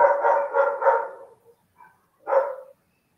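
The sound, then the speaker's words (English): A dog barks three times in quick succession, falls quiet for a moment, then lets out one more bark. The barks are clear and moderately loud, with no one talking. “I got our dog barks in the background.”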